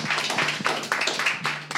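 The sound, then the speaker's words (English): A crowd applauds as representatives of the community organization Stay Silent PVD are called up: a steady wash of many hands clapping at once with a few sharper claps popping out, sustained at an even level for a couple of seconds with no voices. “Big applause.”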